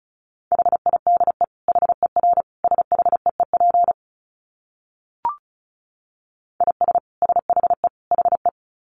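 Rapid Morse code at 35 words per minute in a steady mid-pitched tone, keyed in fast dits and dahs for about four seconds, then a pause broken by one brief blip, then more quick code.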